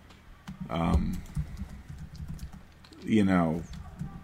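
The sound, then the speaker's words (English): Rapid, irregular clicking of typing on a MacBook Pro laptop keyboard runs throughout, very loud and fairly crisp, with two brief bursts of voice breaking in over the key taps. “Just the MacBook Pro keyboard.”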